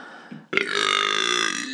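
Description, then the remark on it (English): A loud, drawn-out burp erupts after a brief quiet moment, rumbling steadily for over a second with a rough, throaty buzz. “That burp was brought to you by Liquid Death.”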